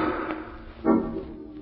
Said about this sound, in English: Margot and Lamont are in the home of the wealthy actor Hugo Zara, owner of the fabulous Ruby of Karavahl, when suddenly from upstairs they hear the sound of a gunshot.